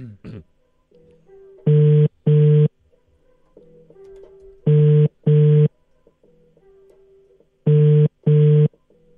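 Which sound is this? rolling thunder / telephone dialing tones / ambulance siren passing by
telephone dialing tones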